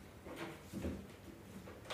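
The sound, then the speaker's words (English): Quiet rattling and clunking of someone fumbling with a door, a few scattered knocks and scrapes over a couple of seconds, with a sharper clack at the end. “I don't know how to open it.”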